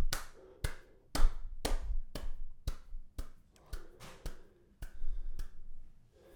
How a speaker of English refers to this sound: Another round of applause for Johnny Boy.